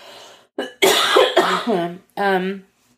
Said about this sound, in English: I'm still coughing. As you can hear. Yeah. I'm still coughing.